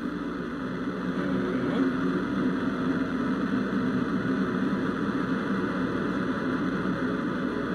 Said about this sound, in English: Coming up on 30 seconds into flight, the RD-180 is throttling down as expected. Engine response looks good. And Mach 1, Atlas 5 is now supersonic.